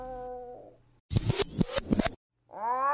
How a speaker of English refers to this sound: What is that sound? My cat's in heat. What? She wants to have kittens. She's calling for a mate.